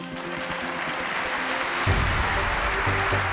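A large crowd of Republicans and Democrats in the chamber applauds steadily during Bill Clinton's speech, a dense wash of clapping that swells louder partway through and keeps going without any speech over it.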